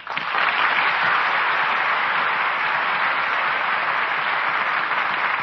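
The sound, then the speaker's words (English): An audience bursts into sustained applause as Al Jolson and Gail Patrick return to the footlights for a curtain call after a performance of The Jazz Singer; dense, steady clapping rises quickly and holds at a loud, even level, with no voices standing out. “And that applause will assure you both how much we enjoyed tonight's performance.”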